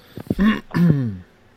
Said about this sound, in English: And I didn't mean to clear my throat there. I forgot my mic was still on. So I apologize.